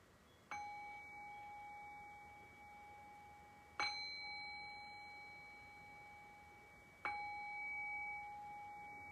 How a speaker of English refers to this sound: And I'll cue that by ringing the bell 3 times. Sometimes the sound of the bell can act as an extra amplifier for the physical sensations of gratitude, so you might want to explore that as well. In any case, I'll ring the bell.